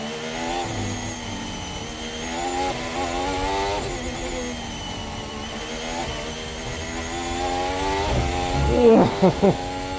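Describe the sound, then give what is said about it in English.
A high-pitched racing car engine screams and revs continuously during an onboard lap, its pitch climbing and dropping through gear changes, loud, with a few sharp bursts near the end. “Nearly hit the wall there, did you see that?”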